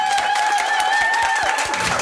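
An audience applauds steadily, a dense, loud wash of many hands clapping throughout, with a sustained whistle-like tone riding over the crowd noise.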